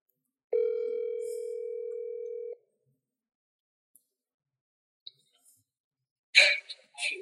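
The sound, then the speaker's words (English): One steady two-second burst of an outgoing phone call's ringing tone, clear, followed by a long silence before a voice briefly speaks near the end. “I'm going to call Nori, man. Call Nori. Get Nori on the phone”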